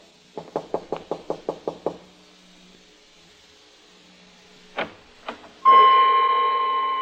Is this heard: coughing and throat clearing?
no